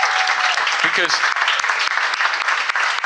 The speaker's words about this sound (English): And can we just have a round of applause for them too, please?